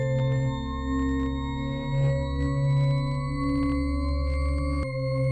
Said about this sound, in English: Did the 288 record that distortion?